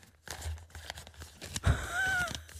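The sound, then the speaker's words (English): A man flips and rustles through the pages of a book, a series of soft papery crinkles and swishes with a brief faint squeak near the end, no talking. “literally has a book and he's rustling through the pages.”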